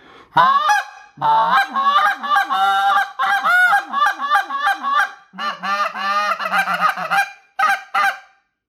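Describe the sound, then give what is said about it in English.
A reassembled goose call, its reed slid tight and matched up, blown in a rapid series of loud, reedy honks and clucks, some notes breaking upward in pitch, with brief pauses between bursts and no talking. “Let's see what it sounds like when we put it together.”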